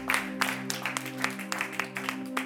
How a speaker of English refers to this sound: Can you put your hands together and give another clap offering to the Lord?